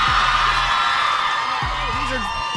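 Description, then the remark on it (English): A small crowd at a beach in the morning cheers and whoops, a broad steady roar of voices with a few rising shouts poking through, loud and continuous across the whole stretch. “So we have a crowd here.”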